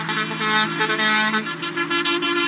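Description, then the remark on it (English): Loud truck horns from a convoy of 64 trucks in New Zealand blare continuously, several overlapping tones honking together at once in a sustained chorus, with no talking. “And what he got instead was a 64 truck convoy for the boy, and it made his day.”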